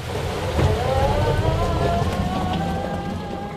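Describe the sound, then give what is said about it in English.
Peggy, an electric all-terrain vehicle designed in New Zealand and run off solar energy, pulls away with the brakes off, its motor giving a steady whine that rises slightly in pitch over a constant rumble of wheels and outdoor noise. No one speaks. “For the next part of the journey, we hop into Peggy, an electric all-terrain vehicle designed in New Zealand and run off solar energy.”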